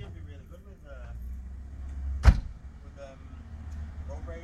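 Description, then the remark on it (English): A single sharp thunk of a car door closing cuts through midway, set against a steady low vehicle rumble with faint, indistinct voices before and after. “Well, now all is forgiven for leaving your door open.”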